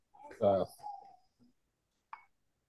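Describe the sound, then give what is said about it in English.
A parrot mimics a single spoken word in a squawky, voice-like call, fairly loud, followed by a brief faint chirp a second and a half later. “Parrot.”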